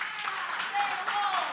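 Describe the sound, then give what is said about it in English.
An audience claps steadily and densely to vote for the party it wants to go to, a wash of applause mixed with scattered voices and a faint whistle, fairly loud and continuous throughout. “Only clap for the party that you want.”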